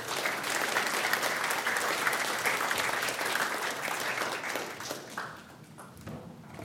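A church audience applauds steadily as someone is invited forward to share a testimony, a dense wash of many hands clapping at an even level for about five seconds before thinning out and fading toward the end.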